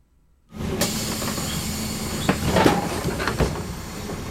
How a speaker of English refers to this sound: Yeah, it's a bus door. It's a door opening of a bus.